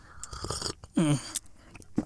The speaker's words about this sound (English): I'm getting another sip of my tea. Let me get another sip.